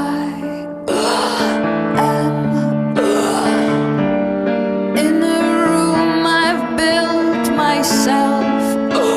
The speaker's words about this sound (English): And you hear her literally gasping as she's singing it.